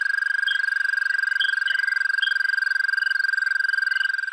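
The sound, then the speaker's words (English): A long, steady, high-pitched musical trill of an American toad in Newfoundland, a species introduced there in the 1960s, runs unbroken for several seconds, loud, with faint chirps scattered in the background. “We're more likely to hear the American toad, which was introduced in the 1960s.”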